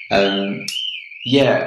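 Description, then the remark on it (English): A car alarm going off outside sounds a steady, high-pitched electronic tone that never breaks, while a person talks over it at the start and again near the end. “Oh, we have a car alarm, but that's kind of just how we do, because it's live.”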